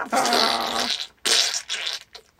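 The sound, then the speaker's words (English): A voice imitates blood spurting everywhere with a wet, sputtering mouth sound: one long spray followed by two shorter bursts, fairly loud, coming across much like a raspberry or fart. “That sounded like a fart, but I meant to be blood spurting everywhere.”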